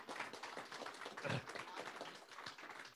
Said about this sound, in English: Would you give another round of applause to our actors and our worship team?